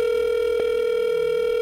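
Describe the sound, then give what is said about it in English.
A steady, unbroken telephone dial tone hums at an even level while a phone number is being called, with a single faint click partway through and no voices. “Neither of us know who's going to be at the other end.”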